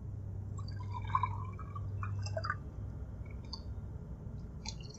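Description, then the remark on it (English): Water trickles and splashes into a glass with soft clinks and drips, quiet, over a steady low hum in the background. “Water? Thanks.”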